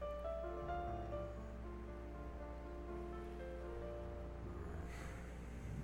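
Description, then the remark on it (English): Soft, steady ocean waves lap and wash around a boat out on the water, quiet, with a low rumbling undertone, faint sustained tones, and a brief airy swell near the end; no one speaks. “Beautiful it is out here on the water.”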